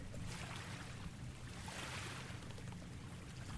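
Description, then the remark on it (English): Gentle waves wash and lap on a mountain lake in a steady, continuous stream, soft and unbroken, with a faint low rumble underneath and no voices. “Quiet waves, I command you.”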